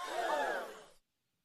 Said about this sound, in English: So we got the little gasping sound and sound like a phaser gun.